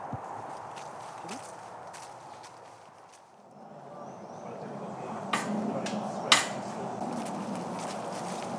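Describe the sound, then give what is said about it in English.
Footsteps squelching through a muddy patch by a gate at the corner of a field, a steady walking rhythm with soft, wet impacts and a couple of sharper knocks, over a low outdoor background. “We've now come through a gate, through a muddy patch, right at the corner of the field where obviously cattle congregate.”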